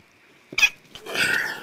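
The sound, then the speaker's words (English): A sneeze: a sharp, abrupt burst followed by a longer, breathy, hissing release, moderately loud with no talking around it. “Got a little bit of sneezing going on.”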